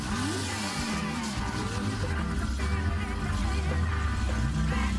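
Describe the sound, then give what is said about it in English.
A custom-built, very lightweight sports car weighing about 2,000 pounds, with added side air ducts, revs its engine loudly and steadily, its pitch rising and falling in waves over a dense, roaring mechanical drone, with no voices. “A lot of the stuff that he's done in the car is very custom. But listen to that.”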